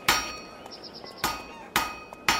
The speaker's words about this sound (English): Legend states that one day, Pythagoras was walking past a smithy's workshop, listening to the sound of the blacksmith's hammers on the anvil.